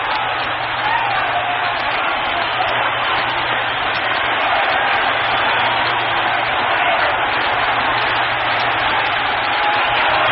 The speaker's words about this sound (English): Boy, did you ever hear more yelling around here?